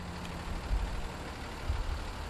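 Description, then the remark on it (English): Steady low rumble and road noise from inside a moving bus heading from Montreal an hour south to a family farm just outside the village of Saint-Armand, with a couple of soft thumps from bumps along the way and no voices. “I'm on a bus heading from Montreal an hour south to the Benoit family farm”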